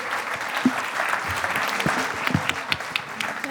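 A room full of people applauding steadily, a dense patter of many hands clapping at moderate volume with a slight reverberant echo, no voices standing out.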